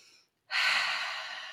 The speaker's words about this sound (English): breathing slowly through the nose when a panic attack is starting.